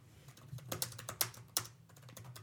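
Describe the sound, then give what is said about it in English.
Rapid clicking of keys on a computer keyboard, an irregular run of sharp taps with a few louder strikes, over a low steady hum, no voices. “Typing sounds.”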